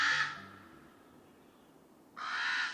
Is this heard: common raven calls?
yes